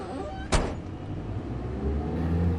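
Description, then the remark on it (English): A single sharp thump, like a taxi cab door shutting, then a steady low engine rumble that swells slightly as the taxi cab pulls away. “Come on, let's take this cab and relax.”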